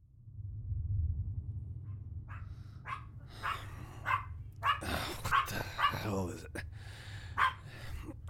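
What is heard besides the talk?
dog barking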